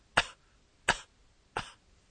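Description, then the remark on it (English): A person gives three soft, short coughs as a demonstration during a voice exercise. The coughs are spaced evenly about two-thirds of a second apart and are quiet, with silence between them and no talking. “cough a few times very gently so you don't irritate your throat”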